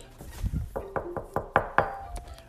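Knocking on a tree trunk: about six firm, hollow wooden raps in a quick, steady rhythm, fairly loud, with no one speaking.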